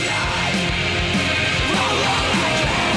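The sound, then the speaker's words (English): Harsh screamed vocals from a pirate-themed album ride over loud, dense music, the shouting voice strained and sustained across the whole stretch with no quiet breaks. “The next time you start screaming, I'm going to try and tell you what he's saying.”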